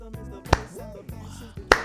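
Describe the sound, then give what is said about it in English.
Two sharp, crisp hand claps about a second apart, each a loud, brief smack standing out over a quieter, steady tonal background that sounds like soft music. “I have to feel another clap.”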